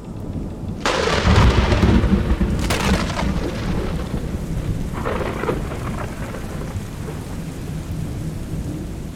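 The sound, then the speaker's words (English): A thunderstorm at sea rages with a deep rumbling thunderclap near the start and further crashes, while heavy rain pours steadily throughout, loud, with no voices. “It was only after they began cutting across the Rhine towards Sheltie lands that the storm hit.”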